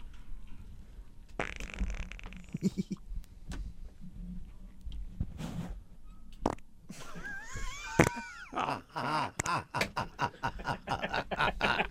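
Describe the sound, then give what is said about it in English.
Two people fart on command, one after the other: an early buzzy, raspy burst, then a longer squeaky, wavering fart with rising and falling pitch, followed by choppy sputtering bursts and faint background chatter. “All right, everybody, name who's farting right now.”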